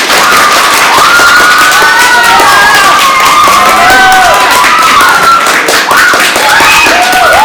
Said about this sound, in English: Let's get an auditory survey. Answer with applause. Who would win in a fight?